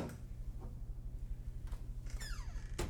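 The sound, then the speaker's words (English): A door handle clicks and the door creaks open with a short squeaky whine, ending in a sharp knock, over a low steady hum. “I saw two doors, one where I thought the voices had come from. I turned the handle and entered.”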